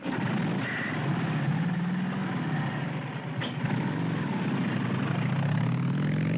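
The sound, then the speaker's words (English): A motorcycle engine rumbles and revs continuously and loudly in a retro 1960s motorcycle B-movie trailer, its pitch wavering and climbing toward the end, with a muffled, old-recording quality and no voices. “But while we're waiting for him a little bit, I thought you would enjoy to hear a retro 1960s motorcycle B-movie trailer.”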